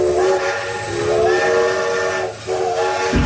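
A loud steam train whistle, signaling the Teddy Bear Express delivering teddy bears to children's rooms at Phoenix Children's, sounds one long, sustained, slightly wavering chord over a bed of hissing steam, dipping briefly near the end before blowing again, with no voices.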